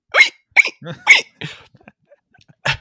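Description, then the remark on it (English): A voice imitates a squeaky dog toy, the kind a dog nudges with its nose until it squeaks loudly, with a series of sharp, high squeaks in an uneven rhythm, then a short quiet gap before one last squeak. “you throw it, and he nudges it with his nose until it squeaks, like, super loud”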